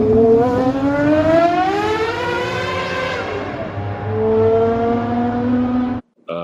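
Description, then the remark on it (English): A high-pitched Murray T50 supercar engine screams as it revs through a tunnel, the pitch climbing and falling through gear changes with a reverberant, enclosed echo, loud and sustained, then cuts off abruptly. “So here's it going through a tunnel. Here's the T50.”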